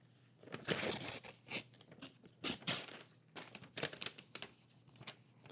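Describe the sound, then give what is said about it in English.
Gift wrapping paper being torn open from a present containing a record: a flurry of crinkling, ripping bursts, uneven and bright, with short pauses between tugs and no voices. “But here, I got you something too. Sweet. Thanks, man. You opened yours first.”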